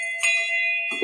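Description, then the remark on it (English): A single bright bell ding, rung because the word "synergy" was said, rings out clearly and sustains with a long shimmering tone, followed by a brief soft thump near the end. “Every time we use the word synergy, we ring the bell.”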